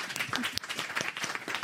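A crowd breaks into steady applause, many hands clapping at once in a dense, continuous patter that stays fairly loud and even throughout the short burst.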